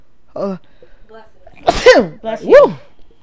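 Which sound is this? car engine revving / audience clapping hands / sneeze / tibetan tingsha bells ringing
sneeze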